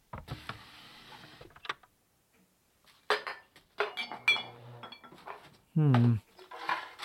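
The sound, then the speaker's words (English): A drawer rattles open, then metal cutlery clinks and jangles in irregular bursts as items are pushed around while searching the "everything drawer" for a screwdriver, with a brief loud scrape near the end. “I think I remember seeing a screwdriver in the everything drawer.”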